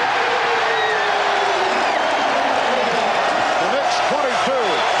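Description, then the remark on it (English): A big arena crowd at a Knicks–Pacers basketball game roars and cheers steadily after John Starks hits a three-pointer to make it 22-19, a dense wash of noise with whoops and rising shouts standing out, especially toward the end. “John Starks has this crowd going.”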